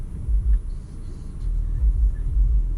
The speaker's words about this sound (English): Why is that guy blasting his music so loud? Pretty sure you guys heard that. Bro, it's vibrating the car. Turn your music down, mate.